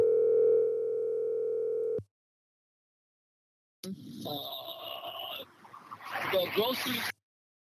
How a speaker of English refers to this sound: So let's get him on the phone. Jesus Christ. Oh, it's a loud ring.